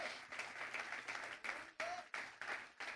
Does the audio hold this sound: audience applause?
yes